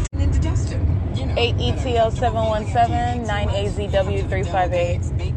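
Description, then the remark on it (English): Steady low road rumble of freeway traffic on the 10 West, heard from inside a moving car, constant and loud throughout, with a person talking over it. “Terrorism while these demons are stalking in traffic.”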